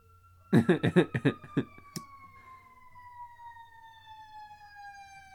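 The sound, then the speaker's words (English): A fire truck passes in the rain with a rapid series of blaring horn blasts, followed by a steady siren wail that slowly drops in pitch as it moves away. “We get fire trucks like all the fucking time here.”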